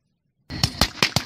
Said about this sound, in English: there's got to be a better way than the propane cannon being fired off to scare crows away. That's definitely not a cannon.